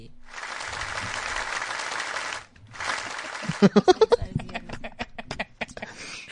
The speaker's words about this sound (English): And because one round of applause is not good enough, yeah, I mean, we had this just for you